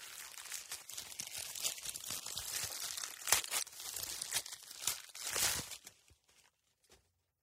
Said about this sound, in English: Sound 5. Opening the present. Untying the ribbon. Removing the paper.